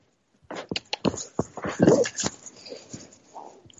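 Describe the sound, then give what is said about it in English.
A pet dog named Boswell whimpers and whines in a string of short, breathy bursts, with one longer rising whine partway through, then the sounds taper off into quieter snuffles. “and my scheming to somehow get him together with my dog, who is as beautiful as Anthony.”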